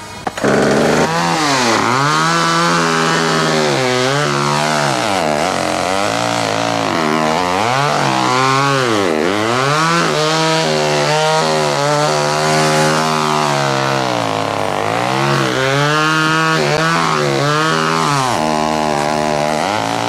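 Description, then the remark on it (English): A chainsaw roars continuously as it is used to carve features, its engine pitch repeatedly rising and dipping as it revs and bogs down while cutting, loud and steady for the whole stretch with no voices. “A chainsaw.”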